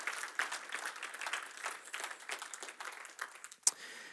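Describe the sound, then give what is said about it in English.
A crowd claps steadily for several seconds, a dense patter of many hands with one sharper, louder clap near the end before the applause thins out. “Come on, yeah, clap your hands, guys. Clap your hands, that's good.”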